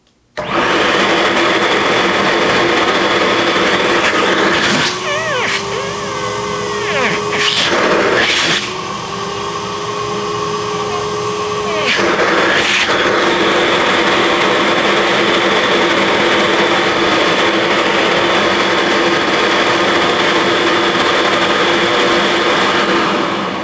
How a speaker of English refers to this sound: It's quite a cleaner. It also, you can put the hose on the other end of it, and it will function as a blower as well. So here we go. This is the Metropolitan Professional canister vacuum.